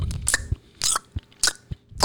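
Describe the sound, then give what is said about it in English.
A voice mimics a man noisily smacking chewing gum: a quick series of wet, rhythmic mouth smacks and clicks, fairly loud, with no talking. “So he's over here smacking his fucking”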